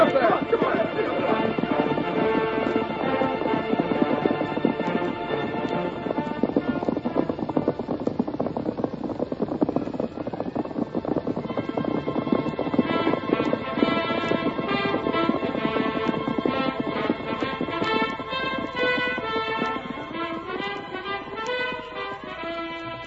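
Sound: horse hooves clip-clopping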